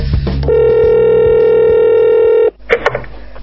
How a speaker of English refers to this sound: Okay, here we go. We're ringing.